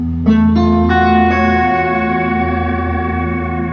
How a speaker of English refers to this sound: Sort of sound, but it does these crazy sort of infinite reverbs almost. Yeah. But that's the same pedal, huh? It's beautiful. And now it gets weird. Cause you can now put the modulation in there, yeah.